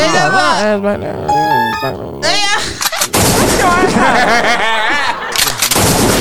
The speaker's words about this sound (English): Oh, the gunshot.